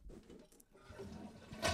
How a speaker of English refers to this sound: Ooh, let's get that out of my system. Let's flush that down the toilet. Flush it right now